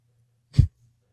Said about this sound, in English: Excuse me. I'm sorry I keep sniffling into the mic, folks. I apologize. I know it sounds disgusting. I am so sorry.